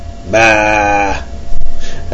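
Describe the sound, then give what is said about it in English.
A person lets out a single drawn-out, wavering "baa" in imitation of a sheep, fairly loud, lasting about a second before fading into quieter vocal noise. “I'm starting to sound like a sheep.”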